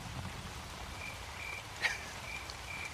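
A thunder and rain sleep-sounds recording: steady, soft rain hiss with a low rumbling undertone, faint repeated high chirps, and one brief sharp tap partway through. No voices.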